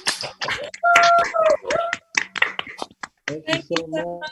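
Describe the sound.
Uneven, scattered clapping from several people on a video call, unmuted to give a guest a round of applause, mixed with overlapping voices cheering and calling out, the sound choppy with brief dropouts between bursts.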